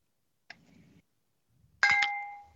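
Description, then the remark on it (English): A wine glass is tapped: first a soft, short knock, then a sharp clink that rings out with a clear, high sustained tone, slowly fading away. “Someone had a nice fancy sounding glass.”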